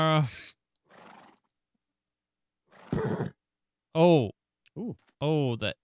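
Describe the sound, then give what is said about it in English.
A horse in a video game neighs and whinnies in several bursts, with wavering harmonic calls and a snorting blast in the middle, loud, separated by short pauses. “Bye, horsey.”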